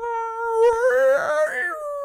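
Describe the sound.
A person's voice imitates the Bloop, an ultra-low frequency ocean sound from the depths below Point Nemo: one sustained, moaning, howl-like tone about two seconds long that wavers and swells in pitch, fairly loud, with no other sounds.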